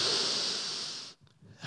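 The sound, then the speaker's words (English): A loud, airy rush of many people drawing in a deep breath together at the speaker's request during a sermon at New Life, lasting about a second, followed by a brief hush and a fresh swell of breathy noise. “Everyone take a deep breath.”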